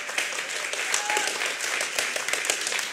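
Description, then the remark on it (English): A church audience applauds steadily, many hands clapping in a dense, continuous patter at moderate loudness, with a faint murmur of voices beneath. “Clap away, and I hope you clap harder after this part.”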